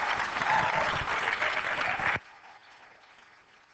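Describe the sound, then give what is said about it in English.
An audience at an evening church service applauds warmly to welcome a preacher from Freedom Ministries, with dense, steady clapping for about two seconds, then it cuts off abruptly, leaving only a faint, quiet murmur behind. “You give him a warm hand as he comes and shares”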